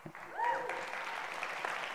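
Steady applause from a crowd for the speaker's wife on their 16th wedding anniversary, a dense wash of many hands clapping at once, with a few whoops and cheers rising briefly near the start.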